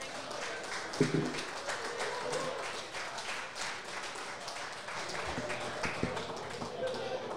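A round of applause: many hands clapping in a dense, steady patter that holds at an even, fairly loud level for about seven seconds without fading.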